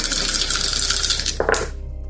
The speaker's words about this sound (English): That would give you four dice to roll to catch up to this person. Yeah. Yeah. I'm gonna do it. Okay. Do it. Which dice will not curse me today? Maybe you. And this one. Okay.